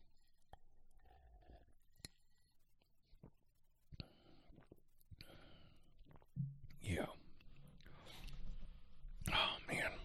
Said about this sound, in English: here, let me get a sip on this.